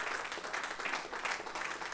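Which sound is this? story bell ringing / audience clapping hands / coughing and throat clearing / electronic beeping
audience clapping hands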